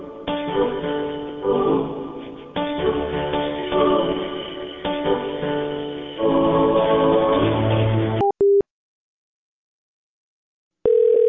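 Thin, tinny phone-line music plays for several seconds while a caller is put on hold during another call, then cuts to a short electronic beep, a pause of silence, and a steady telephone tone returning at the end.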